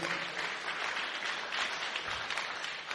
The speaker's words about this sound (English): Clap hand for Jesus.